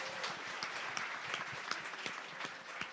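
A crowd applauds the cast steadily, dense overlapping claps forming a continuous bright wash of sound with scattered sharper individual claps standing out; no one speaks.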